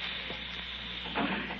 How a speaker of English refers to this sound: Listen. You hear that? It's the gas. Someone's turned on the gas. I can smell it.